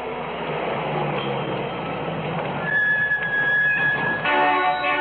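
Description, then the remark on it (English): A heavy truck engine rumbles steadily as it pulls in at a service station on a desert highway in southwestern Nevada to pump fuel. A thin high squeal rings out midway, then the motor settles into a throbbing, humming idle with no voices. “Hey, Walt, the truck's here.”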